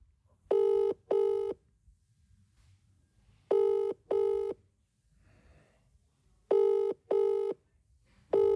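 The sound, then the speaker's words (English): Outgoing phone call ringing on the line: three clear double-ring tones, evenly spaced about three seconds apart, steady and moderately loud with quiet gaps between, no talking. “we're going to phone our private caller”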